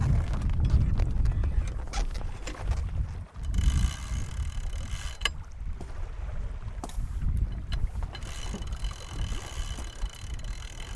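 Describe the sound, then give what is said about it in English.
Sails are being hoisted on a sailboat heading towards Castries, offshore with Pigeon Island in view: scattered clicks and rattles of rigging and winch over a steady low rumble of wind and water, with no voices. “And let's just hoist our sails and get out there.”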